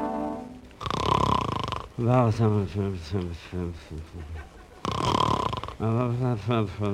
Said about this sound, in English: Every night it's the same thing, snoring and mumbling.